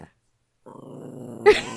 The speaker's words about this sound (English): Kona the puppy. She's growling already. Kona's so loud.